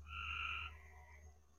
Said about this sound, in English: all we hear is frogs.